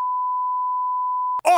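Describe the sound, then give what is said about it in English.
A steady, loud censor bleep over a spoken name holds a single pure tone for over a second, then cuts off abruptly as a voice resumes talking. “I'll beep it.”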